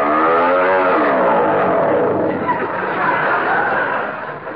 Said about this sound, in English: Well, I can't hear anything. This engine is too noisy.